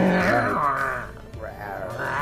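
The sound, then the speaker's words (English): A person imitates a tiger's roar, with a loud, guttural, growling vocalization rising and falling in two drawn-out bursts, no words spoken. “No, it was a big roar like cat. Like a tiger.”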